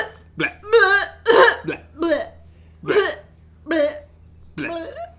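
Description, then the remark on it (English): A voice gives a slight cough that turns into a fit of loud, retching "bleh" noises, about half a dozen voiced bursts in an uneven rhythm over a low steady hum, presented as a symptom of a highly contagious virus. “As you can hear, BL3H starts as a slight cough and soon turns into a fit of blez.”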